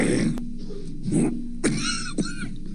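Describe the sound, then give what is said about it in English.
A man lets out a few short, sharp coughs in an uneven series over a low background hum, fairly loud, with brief pauses between them. “He starts with a cough, and then he tells you that he's getting better, and I want you to listen to, after he says, I'm getting better, how it ends.”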